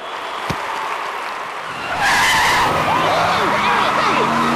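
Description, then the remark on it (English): A car skids to a stop with loud, screeching tire squeal that bursts in partway through, a harsh, wavering screech over rushing road noise lasting a couple of seconds. “I got this for doing that car dealership ad.”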